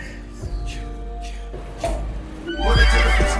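A horse neighs in a drawn-out, quavering whinny that swells loudest near the end, over a steady low bass rumble.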